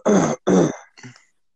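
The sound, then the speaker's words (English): Two harsh coughs in quick succession, followed by a shorter, quieter throat-clearing rasp that trails off into silence. “I have a cough, bud.”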